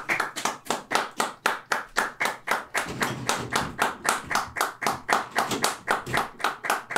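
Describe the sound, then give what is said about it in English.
Steady, rhythmic clapping from a group of people outside, with people howling, heard through an office window, about three claps per second, continuing without pause at moderate volume, with no talking. “I can hear people howling outside.”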